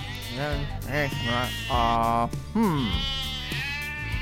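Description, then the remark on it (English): Several sheep bleat in quick succession, wavering cries overlapping one another, fairly loud, with a low rumble of background noise underneath. “A man had 100 sheep, but one could not be found.”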